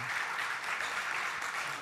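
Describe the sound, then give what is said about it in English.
An audience gives a second round of applause for a presenter after his presentation, dense, steady clapping that holds an even level throughout, a continuous wash of many hands with no pauses. “If I may ask you for a second round of applause because he gave a great presentation and he kept the time.”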